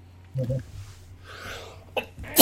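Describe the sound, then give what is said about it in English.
A loud sneeze bursts out at the end, preceded by a short vocal noise and a drawn-in breath, with quiet background hum throughout. “Sneezing. Sorry.”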